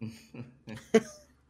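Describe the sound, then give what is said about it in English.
A deliberate, staged cough: a quick series of three or four short throaty bursts, the last one sharpest, then quiet. “AEW, cough.”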